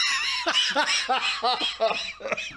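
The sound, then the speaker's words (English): A run of rapid bursts as someone laughs hard and breaks into coughing, the harsh coughs and breathy laughter tumbling together in a steady, uneven rhythm for a couple of seconds. “I'm going to cough myself to death.”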